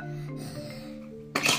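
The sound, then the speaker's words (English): A single sharp sneeze bursts out at the end, fairly loud, preceded by a short voiced breath as it builds up. “Bless you.”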